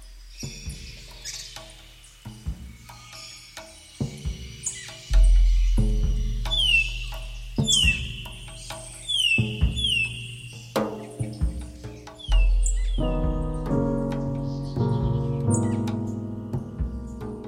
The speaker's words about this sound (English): So it starts with this bird song, and I think I remember reading somewhere that the bird song is actually the origin of the piece.